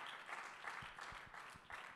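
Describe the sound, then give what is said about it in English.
A church audience claps their hands together in praise to God, a dense, steady wash of overlapping claps filling the two seconds, with a few stronger low thumps pulsing irregularly underneath. No one speaks over it. “Come on, would you clap your hands and just give God some praise right now?”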